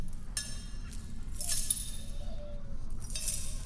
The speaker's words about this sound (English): Get these cuffs off of me. Stop banging them together.